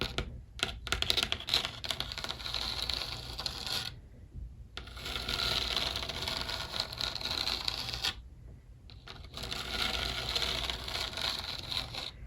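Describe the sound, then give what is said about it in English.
Rapid fingernail tapping and scratching across a textured picture of an elephant in a bedroom of a new apartment, a dense crisp clicking that runs in three long bursts separated by two short pauses, with no voices. “ASMR Tapping Around My New Apartment”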